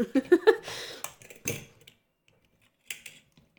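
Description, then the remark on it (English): Keyboard typing in another room in short, irregular bursts of clicking keystrokes separated by brief pauses, fairly quiet, with no voices. “Luckily, he's busy typing in the other room.”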